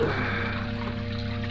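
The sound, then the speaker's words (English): Fountain water trickles steadily into a stone basin, a continuous soft splashing wash at moderate volume with a faint low hum underneath and no voices. “Lay him down on the edge of the fountain.”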